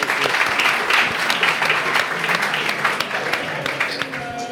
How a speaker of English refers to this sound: having a room full of people cheer at you for that is so, so validating and accepting. So thank you.